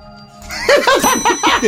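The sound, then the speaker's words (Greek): A telephone rings in a rapid series of bright, trilling bell bursts, loud, starting after a brief quiet moment and repeating several times with no voices. “Βαράνε πόρτες, βαράνε τηλέφωνα ένα-ένα.”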